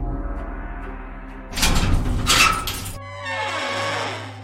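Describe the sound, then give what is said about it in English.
A secret door opens after a brick sticking out of the wall is pushed: a low steady rumble gives way to a loud, harsh grinding scrape of stone for about a second and a half, then settles into a softer, hissing rush. “A secret door opens and you make your way outside.”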